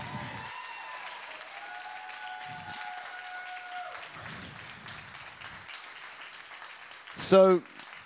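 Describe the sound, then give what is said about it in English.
An audience claps steadily for about eight seconds for a volunteer who helped get the space ready, a dense, even patter of many hands, with voices calling out over it and a brief louder burst near the end. “So y'all clap like you don't know what's going on, right?”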